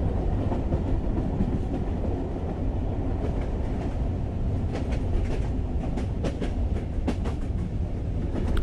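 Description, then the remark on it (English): A train rumbles steadily along the rails, with dense low-end clatter and scattered sharp metallic clicks and clacks from the wheels, continuous, with no voices. “I'm gonna make this train stop.”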